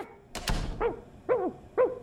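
A dull thump or two, then a glass dog barks fiercely three times in a steady rhythm, each bark short and sharp, with quiet gaps between them.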